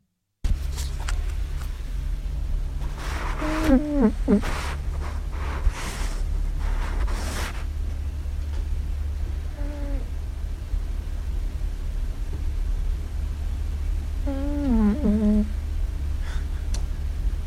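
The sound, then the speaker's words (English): Someone snoring at home in uneven breathy bursts, some ending in high, wavering whistly squeaks, repeating a few times over a steady low rumble of background noise. “Yeah, this is … snoring. This is what like distracts me from working.”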